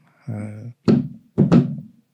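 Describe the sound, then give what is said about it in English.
A short hummed voice, then three dull knocks on a brewery door in a pattern: one knock, a pause, then a quick double knock. “And give the characteristic knock that I've been doing for years now coming here.”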